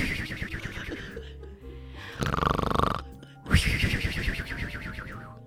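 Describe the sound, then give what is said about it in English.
A voice imitates a woman's loud snoring: rough, rattling inhales alternate with a drawn-out breathy exhale carrying a thin whistle, repeated in strong bursts. “Well, she snores and she'll go the... whatever. But then there's the whistle, the...”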